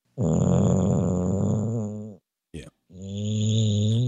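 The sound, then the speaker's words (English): A man snores loudly while on hold on a phone call, one long rasping inhale, a brief catch, then another heavy snore starting, deep and rumbling with no talking. “I feel guilty because he's out of minutes because he was on hold the other night snoring for an hour and a half or whatever.”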